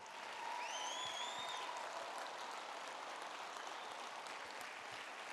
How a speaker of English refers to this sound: You don't need a cue to clap. You don't need to look around and see when everyone else is clapping. Just go.